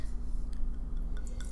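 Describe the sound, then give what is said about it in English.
Wine trickles faintly into a wine glass, a soft liquid pour with a few small drips and clinks over a steady low hum, with no one talking. “Hopefully the microphone picks up this little pouring action.”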